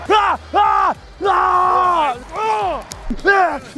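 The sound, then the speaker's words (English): A man bellows a string of loud, hoarse battle-cry yells to get himself hyped, about five strained bursts with rising and falling pitch and short breaths between them. “And then as I yell, I get myself more hyped.”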